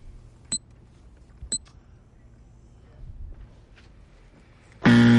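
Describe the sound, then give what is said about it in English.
A loud, harsh quiz buzzer, hit to signal the start of round two of a quiz, blares near the end after a quiet stretch broken by two sharp clicks, its gritty, low-pitched drone cutting in suddenly and running to the finish. “Let's go, and we'll hit the buzzer to signify the start of round number two.”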